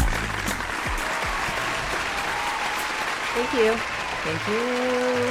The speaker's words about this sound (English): No, I love the applause. Yes. Too bad it's imaginary. Anyway, it's canned. Well, it's real. It's real in my mind.